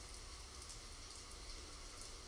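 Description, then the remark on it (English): Steady rain falls continuously, a dense, even hiss of drops with a soft low rumble underneath, consistent throughout with no voices. “Hearing the rain, noticing any sensations in your body, any pain, or tightness.”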